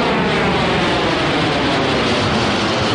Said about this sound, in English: You said for a ride, so I got us a jet. We're taking off.